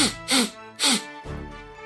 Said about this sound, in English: I was expecting a giggle with the sniffle, but, you know, that's fine. I thought he was stifling laughter.